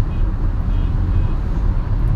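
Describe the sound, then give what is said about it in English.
Steady, low rumbling road noise from a moving car, a continuous engine and tire drone with no breaks. “But this is like podcast on the road.”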